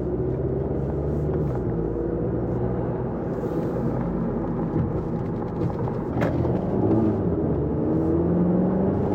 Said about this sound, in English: There is way too much power in this car in the wet, particularly being a front-wheel drive.